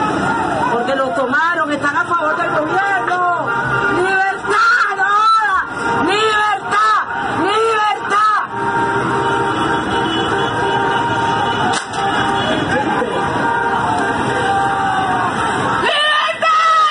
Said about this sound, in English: That woman in the background is screaming liberty in Spanish.